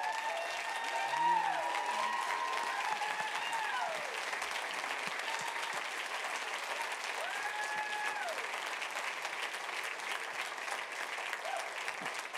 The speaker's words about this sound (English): And so let's stand and give them a really warm applause.